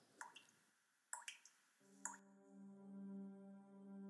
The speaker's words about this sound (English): I peeked inside the disgusting washroom and saw empty medicine bottles in the porcelain sink. The only sound to be heard was the drip, drip, drip of the faucet.